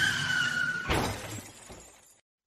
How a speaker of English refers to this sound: Car crash.